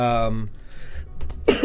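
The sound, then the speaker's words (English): A stuffed-up man clears his throat in a couple of quick, rough bursts, between stretches of voiced sound at the start and end. “has to clear his throat like getting bit.”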